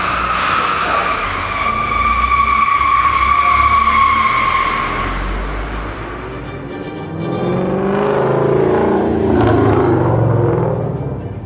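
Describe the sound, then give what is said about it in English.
A loud tire screech holds a steady high whine for several seconds over a low rumble, then the engine of a 1967 Mustang Fastback muscle car roars and revs with rising, throaty sweeps. “Not a sports car. It's a muscle car. A 1967 Mustang Fastback.”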